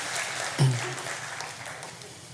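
A crowd gives a final round of applause, clapping together in a steady, dense wash, with a brief low thump near the start and the clapping gradually thinning out.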